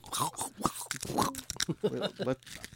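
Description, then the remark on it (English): Crisp crunching of crackers with pickle juice being chewed, ASMR-style, a series of irregular dry crackles and munches filling the short stretch with no one talking. “Did you hear the crunch this. Of AMR? There's some crunching happening here.”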